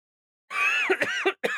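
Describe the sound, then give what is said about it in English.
A short bout of raspy coughing with throat clearing, three or four rough hacking bursts run together over about a second, with no talking. “I'm still coughing, but I'm being nice.”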